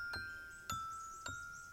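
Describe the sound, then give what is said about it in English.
Three evenly spaced taps with a silver wand on carefully selected pieces of slate balanced on a long wooden frame, a lithophone; each strike sharp and followed by clear, bell-like ringing tones that sustain and overlap between hits. No voices. “And with a silver wand, he tapped the rocks. And on what might be called a lithophone, he made the most ethereal, ephemeral thing he could from his native geology.”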